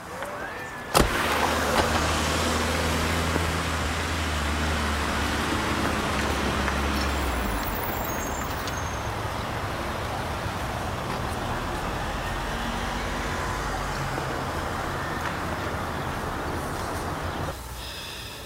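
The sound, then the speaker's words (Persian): A car engine hums steadily, with low rumbling tones that shift as the car drives slowly into a quiet alley and parks, then settles, ending with a brief clunk. “مرتضی سوار ماشین شده در کوچه خلوت پارک میکند.”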